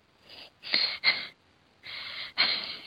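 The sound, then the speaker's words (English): A voice imitates an exaggerated, shocked gasp: sharp, breathy inhalations in a few bursts, with a short pause in the middle, fairly loud, with no words. “And she sees his face, and she does such a ridiculous gasp.”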